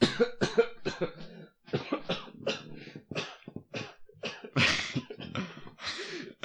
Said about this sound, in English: …'s coughing right now.